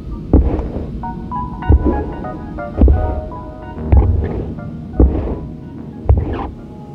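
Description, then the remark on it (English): Six deep, booming thumps from a basement land at a slow, steady pace like a heartbeat, each one echoing with a hollow quality, while a faint tonal hum lingers between them. “But each count was accompanied by the sound, echoing up from the basement, like the heartbeat in his own chest.”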